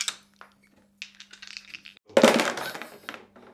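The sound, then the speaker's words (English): Three 12-sided musician's dice, with musical notes on each side, roll and clatter across a hard surface: a few light taps, then a loud burst of tumbling rattles that quickly settles, over a faint steady hum. “would you do us the honour of rolling the three dice?”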